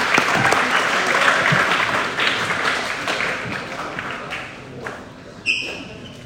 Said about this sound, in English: There are no students in the community like the students of Magen David, and you can give yourself a round of applause for that.